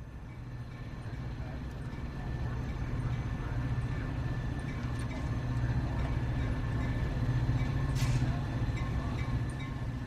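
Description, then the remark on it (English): A deep, steady rumble of an idling train fills the large, echoing hall of Union Station, with faint murmured voices and a brief sharp clank near the end. “But it is the Coast Starlight, a train running up to San Francisco, Portland, and Seattle, that my eyes search out on the schedule here in the cavernous Union Station.”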